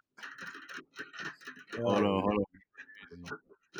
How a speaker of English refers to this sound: Oh, they got drums going. Oh, I thought that was you typing on your damn keyboard.